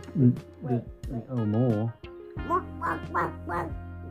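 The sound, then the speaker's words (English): A voice imitates the golden hen from a story about Jack and the golden eggs, with a string of wavering clucks and warbling squawks, pausing briefly partway through before several more choppy calls. “that kind of sounds like a chicken that's been stuck in a hole or something.”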